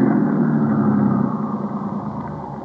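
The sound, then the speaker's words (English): A car engine idles steadily after the car is stopped at a wide spot on the road, a continuous low rumble with an even, throbbing texture that eases slightly in loudness toward the end. No voices are heard. “Just leave the engine running and both of you get out the right-hand door.”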